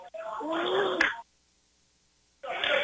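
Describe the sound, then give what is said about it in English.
A sports commentator coughs during a live broadcast of a game between Hanover and Valley Heights: a harsh, breathy cough bursts out for about a second, falls silent, then a second rough cough starts up; both are fairly loud, with no speech around them. “Had a cough there, excuse me.”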